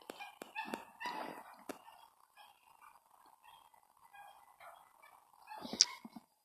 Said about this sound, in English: Some of these motherfuckers come outside with their fucking dogs, yippity yapping and shit.